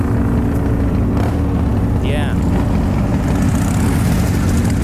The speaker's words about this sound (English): Freaking loud motorcycle.